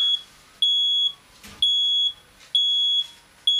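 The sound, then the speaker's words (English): A smoke detector alarm sounds in loud, piercing beeps, about half a second each, repeating steadily with short gaps, clear with no one talking. “That's a smoke detector alarm thing.”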